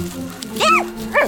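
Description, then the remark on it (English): A dog named Doggo gives two short, sharp barks about half a second apart, loud, over a low steady background hum. “Doggo lunged at the rat and crashed into me instead.”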